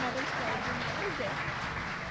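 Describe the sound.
An audience applauds with steady, dense clapping that holds an even level for the whole couple of seconds, while a few voices murmur faintly underneath.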